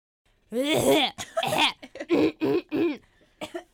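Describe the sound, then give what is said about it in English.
A person coughs and clears their throat in a run of about six rough, voiced bursts, the first long and the rest short and choppy, with no speech. “I forgot my cough drops.”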